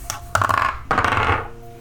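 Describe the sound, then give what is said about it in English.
Dice clatter onto a hard table in two quick bursts, each a loud rattle that tumbles briefly and fades out, as the game master rolls a set of dice for insight rolls in a tabletop role-playing game. No voices are heard. “I'm using my DM dice. I'm not using my player dice.”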